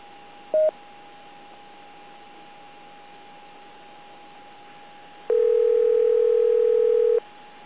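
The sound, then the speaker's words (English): Amateur radio autopatch telephone tones as the patch is accessed for an emergency-call drill: a steady dial tone runs throughout, broken by a short beep early on and a longer loud tone near the end, over a faint hiss with no talking. “accessing the patch for N7NMD. Autopatch.”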